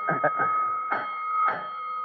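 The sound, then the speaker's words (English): A fire station alarm sounds a steady, continuous electric tone for the whole two seconds, fairly loud, while a voice speaks in short bursts over it. “Alarm, Chief. Will you take it or stand by?”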